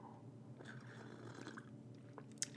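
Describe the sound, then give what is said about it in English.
Wet mouth sounds of someone sipping a drink, with soft slurps and swallowing noises, ending in a sharp little click. No one speaks. “And let me take another sip.”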